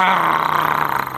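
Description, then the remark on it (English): A voice imitates an angry growl: a single rough, raspy, low-pitched rumble held for about a second, fairly loud and steady, turning into a faster pulsing rattle toward the end. “I don't speak like that when I'm angry, by the way. Like growling.”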